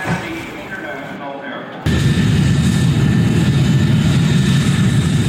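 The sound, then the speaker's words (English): A loud, steady airplane engine roar inside the plane during flight and landing, with a deep low rumble that surges abruptly louder partway through and then holds constant, enveloping. “And so here we are. We've just landed.”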